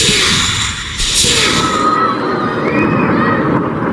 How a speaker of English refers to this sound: Hear the screams of those civilians? Muslims. Fighting for Allah. Isn't that shooting? Real sound from a real place.